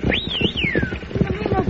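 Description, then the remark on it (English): The hooves of the horse Diablo gallop in a fast, steady drumming rhythm, loud, as he tries to catch up to the lead horses of a team, while a high sweeping whine rises and falls above them and voices murmur underneath. “If I can get Diablo to catch up to the lead horses and head the team towards the wall side of this road.”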